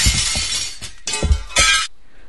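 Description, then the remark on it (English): A glass window shatters loudly as a sound effect, a bright crash followed by a second and third burst of tinkling, splintering glass before it cuts to near silence. “Smashed through that next goal window.”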